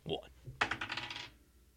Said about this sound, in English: We still have one more roll, and that's the wild card die of the day.